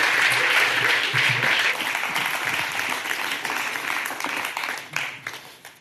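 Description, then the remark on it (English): An audience claps for several seconds, a dense, steady wash of many hands that holds strong, then gradually thins and tapers toward the end, with a few scattered claps left. “Should we give her a clap?”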